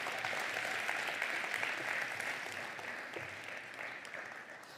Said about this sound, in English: So we should just give them a round of applause wherever they are.